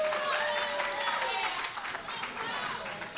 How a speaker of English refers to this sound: That's when you clap right there.